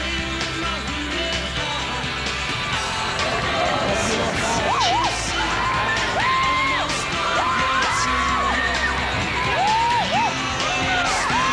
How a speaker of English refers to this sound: The Princess Princess of Wales wrapped up the Canadian tour with a busy day in Ottawa. Almost 10,000 people came out to cheer, touch, and glimpse the royals.